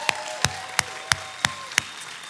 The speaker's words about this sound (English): Come on, while you're clapping, let's give Jesus the loudest, craziest round of applause we've had all day long.